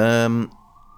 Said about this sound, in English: Sirens again.